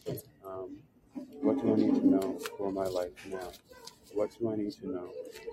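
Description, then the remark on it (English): Angel Tarot cards being shuffled quickly, a soft papery riffling and flicking, running under a person talking for most of the stretch. “So first, since the first votes that came in were for the Angel Tarot cards, I'm going to shuffle these really quickly first.”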